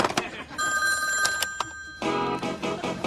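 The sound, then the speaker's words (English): A telephone with an answering machine rings for an incoming call with a steady, high electronic trill, sustained tones that hold for about a second, then a busier burst of ringing with some background chatter mixed in. “Hey, I got another call coming in. I gotta let the machine get it.”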